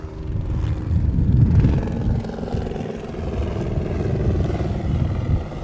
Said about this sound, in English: I think that's a new one on us. I have a helicopter buzz our podcast, but they're not here to arrest us, escort us to our secret underground lair.